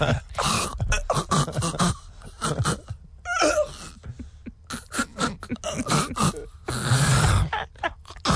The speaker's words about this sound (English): I just got to clear my throat for the big announcement.